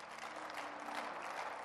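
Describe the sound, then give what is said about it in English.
An audience claps their hands, a dense, steady wash of many overlapping claps sustained throughout at even loudness, with no speech over it. “You can clap your hands again.”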